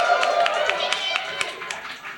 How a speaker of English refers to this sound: So, humbly, you're amazing. Thank you. Round of applause. It's fucking incredible.